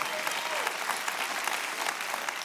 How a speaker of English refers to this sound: My wife, come on, clap our hands